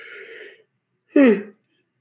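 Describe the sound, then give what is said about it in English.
A drawn-out yawning groan in two parts from a person yawning while talking: a low voiced stretch, a short pause, then a louder, breathy, falling-pitched exhale. No words are spoken. “I don't think I've ever yawned while talking.”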